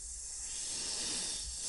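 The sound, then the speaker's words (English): Snakes hiss in a steady, unbroken wash of airy noise, fairly loud, with a faint low rustle of slithering underneath as they fill a room, and no voices. “All I heard was the movement of the snakes filling the room.”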